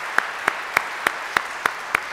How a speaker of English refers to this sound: Let's give thanks to God with these claps.